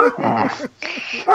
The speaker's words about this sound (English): Oh, Christ's sakes. I don't know who I get more pissed at. These guys for barking or people from coming home.